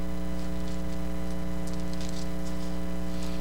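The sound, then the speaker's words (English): Bible pages rustling and flicking in soft, irregular bursts as people turn to Luke 4 during a sermon, with a steady low electrical hum running underneath the whole time; no one speaks. “Don't you love the sound of Bible pages rustling?”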